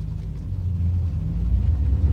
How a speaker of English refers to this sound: I'm in a cab on the way to Trans Pride. I was going to get public transport, but the heels are too big. So I'm in a car with my friends.